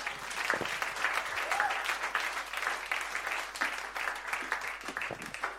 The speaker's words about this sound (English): Amen. Just a round of applause for the word of God.